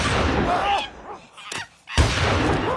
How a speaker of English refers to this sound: Oh, this does someone straight up shot the monkey.